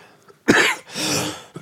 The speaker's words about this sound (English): Excuse me, I need a cough. I didn't have any water.